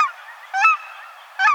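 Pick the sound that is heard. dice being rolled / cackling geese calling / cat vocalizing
cackling geese calling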